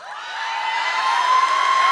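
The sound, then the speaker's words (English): A crowd cheers and whoops in a dense, bright roar that swells steadily louder over two seconds, with no clear individual voices standing out. “Oh, you're cheering.”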